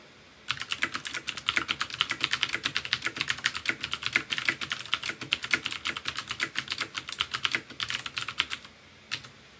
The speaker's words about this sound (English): I typed out the words, "Now is the time for all good men to come to the aid of their country," as one does if one learned to type from a typing book in the 1940s. I recorded the sound because I thought you might enjoy hearing it.